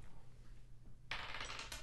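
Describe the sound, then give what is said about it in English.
A die is tossed onto a table and clatters, a sudden bright rattle of quick hard taps that tumbles on for under a second, fairly loud, with no voices. “Yeah, give me just a white day roll.”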